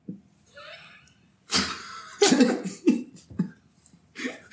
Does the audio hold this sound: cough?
yes